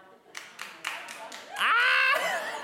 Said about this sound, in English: Can I ask you, who just clapped?